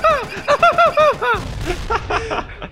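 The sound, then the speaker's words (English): A voice imitates rapid laser cannon blasts, a quick run of about eight sweeping "pew" zaps followed by rougher, noisier explosive bursts, fairly loud. “your laser cannon manned by Bog starts blasting away at the different buildings below”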